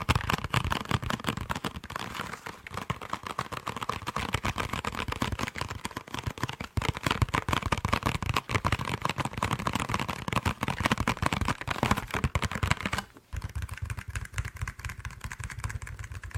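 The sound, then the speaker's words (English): Rapid, continuous clicking of keys being typed on a keyboard, fairly loud, with a dense clattering rhythm that runs throughout and briefly pauses near the end before resuming. “Focus on the sounds of my typing, okay?”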